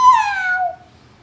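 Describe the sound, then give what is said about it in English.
A single drawn-out meow made by a human voice imitating a cat, its pitch sliding downward over about a second before fading to quiet. “And one cat makes 11.”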